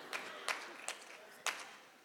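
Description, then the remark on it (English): Scattered, sparse clapping from a few students in a church, four distinct claps spread irregularly over two seconds, fairly quiet with a faint background hiss between them. “Thank you, students, because the church didn't clap for that.”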